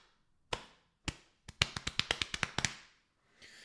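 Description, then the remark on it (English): Someone slaps their own chest with an open hand: two separate smacks, then a quick run of about nine sharp, fleshy slaps in a rapid rhythm, loud against a quiet background with no talking. “I'm slapping my titties. Can you hear that?”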